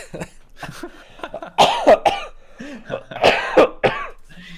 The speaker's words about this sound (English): Oh my God, cough attack.